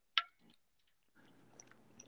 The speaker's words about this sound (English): Excuse me, my bad. I was taking a sip of water.